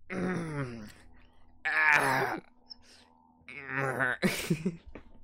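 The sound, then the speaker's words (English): A person groans and moans in several drawn-out, strained bursts, fairly loud, with short quiet gaps between them, while doing morning stretches. “I can tell you're getting your morning stretches out.”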